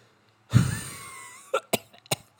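One harsh cough trails into a drawn-out wheezy rasp, followed by three short, sharp coughs in quick succession. No talking, just the coughing fit.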